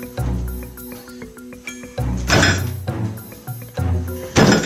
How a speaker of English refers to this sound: There's a turkey banging on my front door.